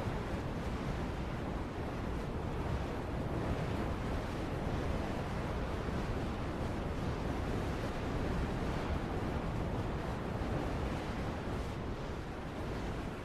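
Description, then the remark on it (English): A dense, unbroken roar of hurricane wind and churning sea waves, rushing steadily across the whole stretch with no letup and no voices. “You see, as you're traveling around here, lightning is picking back up in this hurricane.”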